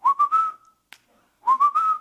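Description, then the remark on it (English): Someone whistles a casual little tune, clear: two short phrases of three quick rising notes each, separated by a brief pause with a soft click, no talking. “He's like whistling.”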